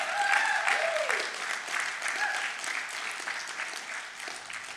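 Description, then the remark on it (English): A crowd applauds the praise team after worship at a church service, with dense, steady hand clapping that holds strong for several seconds, with a few brief voices calling out early on over the clapping. “Can we give the Lord a great big hand clap for the praise team?”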